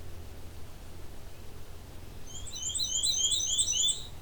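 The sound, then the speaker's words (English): A small black-and-white, striped warbler that climbs up and down trunks and branches like a nuthatch sings a rapid series of thin, high-pitched squeaky notes in the second half, clear over a low, steady background rumble, near a road. “Very stripey. But they act a lot like nuthatches. They climb up and down trunks and branches and go upside down.”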